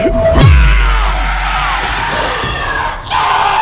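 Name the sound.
monster roaring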